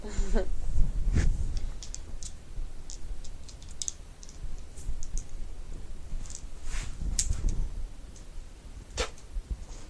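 Dice being scooped up and shuffled together, a busy run of sharp plastic clicks and rattles, with a few louder clattering bursts amid steady low rumble and no speech.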